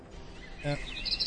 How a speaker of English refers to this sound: I'm right next to the Twitter bird. And the Twitter bird. What does that sound like